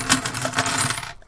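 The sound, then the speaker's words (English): A dense, bright jingling of metal arcade tokens poured out of a jar and clattering together, a steady shower of clinks for about a second before it stops abruptly. The collected tokens include ones from Long John Silver's, Chuck E. Cheese, Aladdin's Castle and a Namco arcade. “This is working out perfectly because I brought this up here with me to show my new tokens to Iceberg. Let me pour these out.”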